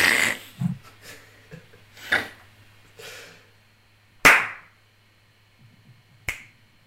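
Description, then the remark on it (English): Several crisp finger snaps ring out one at a time with pauses of a second or two between them, a few landing sharp and bright, others softer, over a faint low hum. “Let me give you my snaps.”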